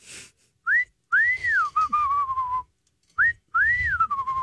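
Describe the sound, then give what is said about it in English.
A person whistles an imitation of a bird call: a short rising note, then a long arching note that slides downward, the two-part phrase repeated twice, clear and fairly loud. “There's a bird that does this. It goes.”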